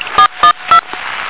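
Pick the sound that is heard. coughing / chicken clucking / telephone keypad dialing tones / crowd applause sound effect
telephone keypad dialing tones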